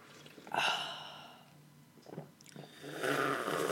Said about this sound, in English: Let's just, I'm going to take a sip of coffee. We'll take a breather and then we'll start.